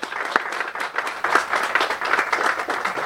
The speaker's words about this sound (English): And we have an amazing organization leading that charge here in Haverhill, VNOC, and I want to give them a round of applause and thank them.